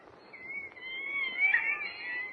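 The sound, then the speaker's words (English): Monkeys used for experiments in a university medical laboratory chatter in a steady stream of high, wavering squeals and twitters that swell to a louder burst midway, over a low rumbling background with no talk. “Listen to those monkeys chatter, Jimmy.”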